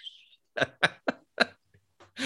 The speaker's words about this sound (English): That's okay. She coughed on the air. Oh my God.